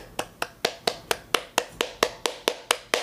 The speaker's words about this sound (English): Can't clap enough. So excited about that.